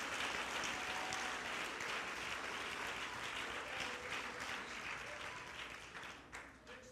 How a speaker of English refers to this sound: Yeah, go ahead and clap. You ought to be happy.